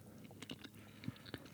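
Someone chews a crunchy cookie, with a handful of crisp, irregular crunches and wet mouth clicks over a quiet background, and no talking.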